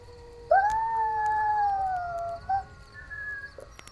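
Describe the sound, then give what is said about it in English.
Wild canines howl in the woods: one long, drawn-out wavering howl, followed by a short yip and a fainter second howl, with no voices over a quiet outdoor background. “Well, I'd be nervous too if I could hear my wild ancestors howling in the woods every night.”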